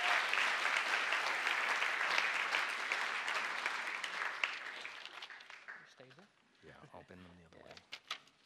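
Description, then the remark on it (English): A crowd claps steadily for about five seconds, then the applause thins and fades, giving way to a few scattered sounds and a brief voice near the end. “round of applause.”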